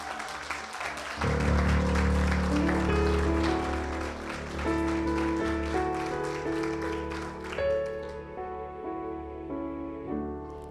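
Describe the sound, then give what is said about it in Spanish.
An audience breaks into sustained, dense applause, a loud crackling wash of many hands clapping, with steady organ-like tones held underneath before the clapping thins toward the end. “Cuando usted vaya a aplaudir por algo, dígalo con todas las manos que usted tiene ahí.”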